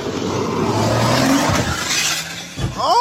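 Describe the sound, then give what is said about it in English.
A loud car crash as several cars are hit: roaring engine and road noise, then a heavy impact with crunching and shattering, ending in a sharp rising screech. “So were any of these cars that just got hit affected at all before just now?”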